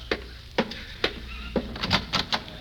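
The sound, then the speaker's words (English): A series of sharp raps on Mr. Benny's wooden back door by the man from the bakery shop delivering an order, about seven knocks in an uneven rhythm, moderately loud, with no voices. “There's someone at the back door.”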